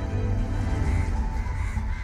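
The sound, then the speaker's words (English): Hundreds of crows flooding into a room caw all at once, a dense, continuous racket of overlapping harsh calls that stays loud and steady throughout, with no voices. “But now the room is flooded with hundreds and hundreds of birds.”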